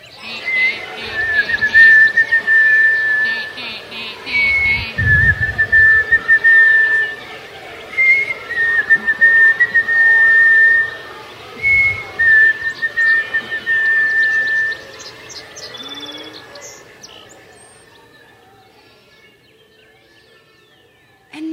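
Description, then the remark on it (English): Several people whistle overlapping imitations of bird calls at once as a dawn chorus, including a nuthatch and a sparrow, a dense chorus of steady tones and rapid chirpy trills that carries on for about fifteen seconds before fading out. “On the count of three, be your bird.”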